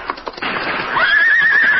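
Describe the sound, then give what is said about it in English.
In a Lone Ranger radio drama, a gray horse ridden in a chase whinnies loudly after warning shots are fired, a sustained high neigh that rises and holds steady, preceded by a few brief scuffling or hoof-like sounds. “Leach fought to control him, but the horse took the bit in his teeth and broke away from the trail, heading straight for a deep gully.”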